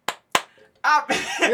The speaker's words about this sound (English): Clapping, that's all you hear and see. Just going.